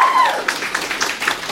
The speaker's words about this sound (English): Big round of applause for two great ladies.